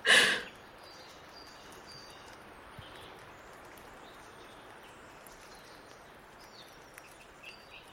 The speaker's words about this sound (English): I love the sound of the rain on that recording. That it's very, it's ASMR. It's that sort of really tip-tappy sort of rain. I love that. I love that recording of rain.